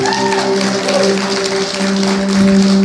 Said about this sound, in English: Let's give an applause for people who've done that.